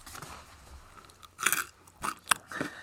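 Close, crisp crunching as someone bites and chews toast, several sharp bursts at irregular intervals with soft chewing between them and no talking.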